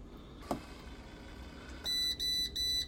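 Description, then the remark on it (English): A Breville Grind Control 12-cup coffee maker signals it is done with three high-pitched electronic beeps in quick succession, the last held longer, following a quiet stretch broken by a single soft click. “This is the Breville Grind Control 12-cup coffee maker.”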